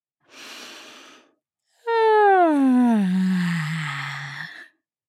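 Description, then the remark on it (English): A big, noisy yawn: a deep breath drawn in, a short pause, then a loud, drawn-out voiced exhale whose pitch slides steadily downward before trailing off. “Yeah, you can even make it really noisy like I did, like a big sleepy yawn.”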